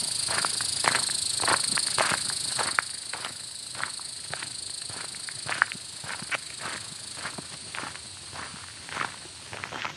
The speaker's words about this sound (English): That's more cicadas.